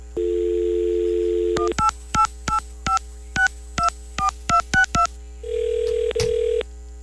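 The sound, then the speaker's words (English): A steady telephone dial tone gives way to a quick run of about eleven touch-tone beeps as the number of the AMC Theaters phone line is keyed in, then a ringback tone begins to sound on the line. “Okay, let's give him a call, shall we?”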